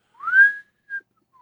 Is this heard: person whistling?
yes